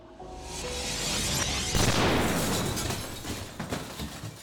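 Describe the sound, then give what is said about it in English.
A loud crystal skull shattering with no talking: a rising whoosh bursts into a bright crash, then a spray of tinkling shards of blackened crystal scatters and slowly fades over several seconds. “And the crystal skull just shatters.”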